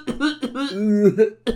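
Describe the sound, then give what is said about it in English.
A person vocally imitates the exaggerated, tongue-out cough that kids do: a few loud, voiced bursts in quick succession, more sung and drawn-out than a real cough. “But you see kids, you like, most kids fucking do the cough or the sneeze with a You know what I mean? The like U tongue.”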